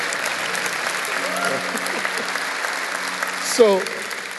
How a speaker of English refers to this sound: That's an applause line, actually. You guys missed it.